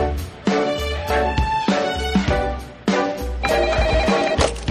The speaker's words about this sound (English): Now let's cut back to the Bymore, and Lester's getting a very interesting phone call.